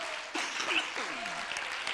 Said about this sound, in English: Everybody, give him another good hand clap of praise.